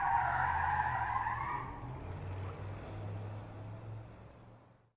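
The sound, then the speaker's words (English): A realtor's car's tires squeal loudly for a moment as it peels out, then the engine's low roar carries on steadily before fading away as it speeds off. “After blinking in brief bewilderment at the realtor's superb imitation of a race car driver, the woman shrugged to herself and began setting up her new, quiet abode.”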